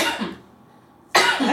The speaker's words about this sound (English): I'm trying to smoke. I'm trying to cough into my elbow.